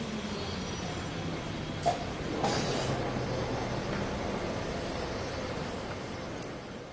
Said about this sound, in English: She took me on the number 28 tram route on a tour of the city.